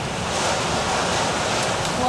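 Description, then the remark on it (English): Steady rain falls outside, a dense, even hiss with a soft rumble underneath that holds at the same level for the full two seconds, with no individual drops standing out. “I didn't know it was raining.”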